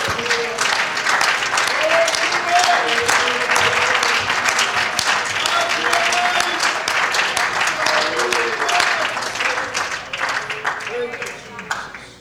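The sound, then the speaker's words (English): A large audience applauds steadily with a hand clap of praise, dense overlapping hand claps for several seconds, with faint voices calling out underneath before the clapping gradually tapers off. “Can we give him a hand clap of praise all across this place tonight?”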